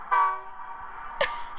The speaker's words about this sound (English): Holy, just Googled free train sound effects. Got your train sound